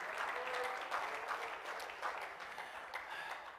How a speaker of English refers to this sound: Oh, clap your hands and praise him again.